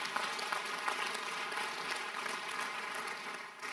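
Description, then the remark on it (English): An audience claps hands in praise, a steady wash of overlapping claps filling the room at moderate volume, with no clear speech over it. “Your clap, praise in the house, one.”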